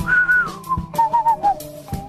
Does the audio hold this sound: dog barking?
no